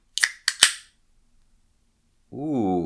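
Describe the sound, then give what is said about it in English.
Three sharp, crackling clicks in quick succession as a can of Yerbana peach apricot sparkling yerba mate is cracked open, each trailing into a brief hiss, followed after a pause by a voice making a drawn-out exclamation. “Don't you love it when you open a can of something and there's like a gentle, the foam, it comes out to meet you, you know?”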